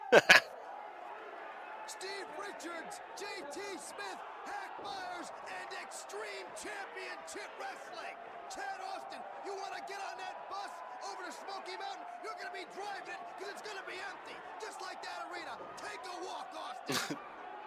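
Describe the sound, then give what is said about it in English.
A large wrestling arena crowd chants "we want more" in unison during a beatdown of wrestler Chad Austin, a steady roar of many voices that holds for the whole stretch, with a sharp thud near the start and another near the end. “What are they saying? We want more? Sounds like it.”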